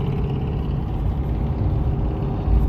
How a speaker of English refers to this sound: There's that truck.